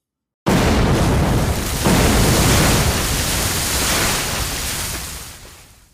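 A loud, sustained roar of explosions going off all around in the English Channel erupts suddenly after a brief silence, with a second burst around two seconds in, rumbling heavily across the spectrum before slowly fading out. No voices.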